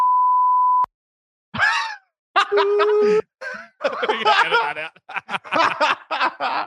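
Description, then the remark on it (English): A single steady, high-pitched censor bleep covering a spoken name lasts just under a second, then cuts off abruptly; after a brief pause, several people talk over each other with snickering laughter. “I'll beep the name.”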